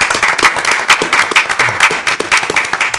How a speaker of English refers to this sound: And then we also have our esteemed staff here with us from the rest of the Sneaker Week crew. All right, let's get a round of applause for everybody.